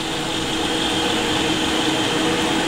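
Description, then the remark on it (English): A food processor blitzes chickpeas, oat flour, almond butter and maple syrup into cookie dough, running steadily at full power, a loud continuous motorized whir with a broad, even roar and no pauses or changes in pitch. “But I am going to blitz this.”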